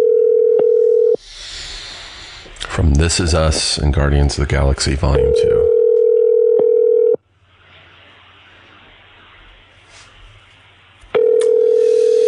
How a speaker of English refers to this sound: Let's do a phone call.